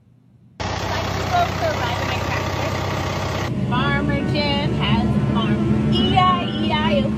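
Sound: tractor engine running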